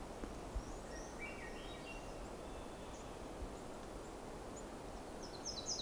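A Nashville Warbler's faint, high call notes come in short scattered bursts over a steady hiss of background noise, with a clearer cluster near the end. No one speaks.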